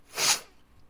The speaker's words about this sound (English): But I've been fighting those sneezes for a while. It feels good to get them out.